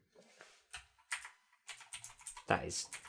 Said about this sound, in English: pressing the Windows key and then using the left and right and up and down